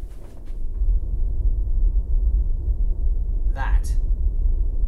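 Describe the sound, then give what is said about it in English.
A loud, steady air conditioner hum in a room sits right up against the microphone, a continuous low rumble throughout, with a brief higher-pitched rustle near the end. “If I put the mic closer to the aircon in the room, listen.”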